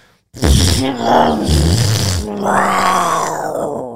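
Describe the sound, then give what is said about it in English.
A voice imitates a pirate fart: a loud, low, buzzy groan with rough raspy bursts, shifting into a long, drawn-out throaty tone that lasts about four seconds. “That's a pirate fart.”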